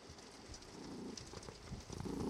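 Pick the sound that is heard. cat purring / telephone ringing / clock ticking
cat purring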